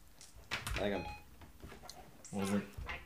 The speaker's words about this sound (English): We've got Siri going off automatically.